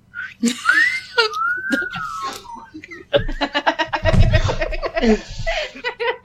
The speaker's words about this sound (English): Yeah. We all whistle. Like seashell.